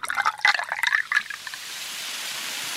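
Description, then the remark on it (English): Soda water pours and fizzes for about a second as it is added to a medicinal elixir, a bright bubbling splash, then settles into a soft, steady hiss of carbonation that lingers to the end. “He adds soda water to his elixir and calls it Beverage Moxie Nerve Food.”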